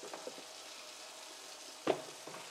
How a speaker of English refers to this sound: runs hot water into the sink and starts gathering bowls of food.